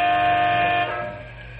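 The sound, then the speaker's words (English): A transport truck air horn, leaned on by Big Jim Mandel of Canyon City Truck Company while a freight train blocks the North Highway, sounds one long, loud blast with a steady, brassy pitch, then trails off after about a second. No one is talking. “Big Jim Mandel leans on his air horn as he grows impatient.”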